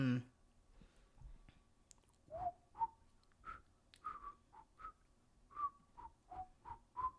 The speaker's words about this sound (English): Can we get sued for whistling a song?